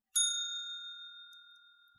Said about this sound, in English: There's no, like, there's no real twists, but I'm gonna hit the bell anyway.